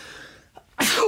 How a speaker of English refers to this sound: Sneezing. Oh, wow. Yeah. We're leaving this in, by the way.